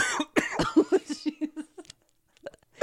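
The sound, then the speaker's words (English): A harsh coughing fit: a rapid string of hacking coughs for nearly two seconds, trailing off into a brief pause, then a couple more sputtering coughs at the end. “I think coughing makes you higher, too.”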